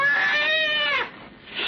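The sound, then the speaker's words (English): A scrawny cat lets out one drawn-out meow lasting about a second, its strained tone dipping at the end before fading into a faint background hiss. “Slowly, it moved into my line of vision. It was a cat.”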